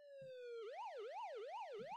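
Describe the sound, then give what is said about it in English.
A loud police car siren, as cop cars pull up outside a house, starts on a steady, slowly falling tone, then switches to a rapid rising-and-falling wail that repeats about every half second, with a low rumble underneath. “you're at home, you're chilling, and around 7 or 8 p.m. cop cars pull up outside of your house.”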